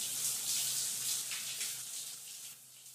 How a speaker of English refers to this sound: I gotta pay this water bill, man. Fucking shower keeps turning off.